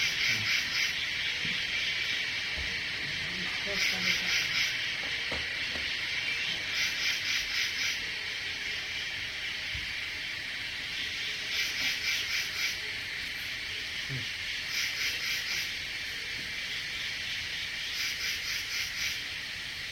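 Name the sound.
cicadas buzzing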